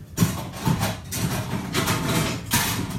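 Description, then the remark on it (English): A kitchen blender running loudly, its motor giving a steady grinding whir that surges in bursts about every half second, with a low rumble underneath and no voices. “I'll just pull out the thing that's meant to keep the mice away so I can use the blender.”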